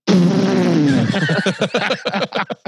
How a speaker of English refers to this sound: And then explodes. He basically makes a farting noise and then explodes.